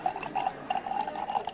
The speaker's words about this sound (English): All you need is 2 ounces of hypnotic, 2 ounces of champagne. You just pour it into a chilled champagne flute.